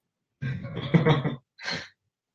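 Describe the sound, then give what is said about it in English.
A single snore: a rough, rattling inhale lasting about a second, followed after a brief pause by a short, breathy exhale. No one speaks. “The answer to this one is actually going to be it's a snore.”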